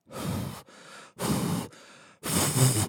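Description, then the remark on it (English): A person imitates heavy, raspy breathing on the phone: three loud, harsh exhales alternating with two quieter inhales in a slow, steady rhythm, with no talking. “The whole heavy breathing on the phone thing.”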